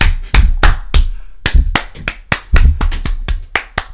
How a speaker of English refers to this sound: I will sync those claps with the camera.